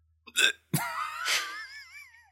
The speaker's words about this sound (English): It happened at the same spot. I know. Your hiccups are on a timer.